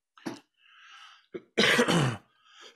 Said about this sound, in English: Excuse me. I got COVID like 3 weeks ago and I've been like coughing ever since, even though I feel fine. It's super annoying.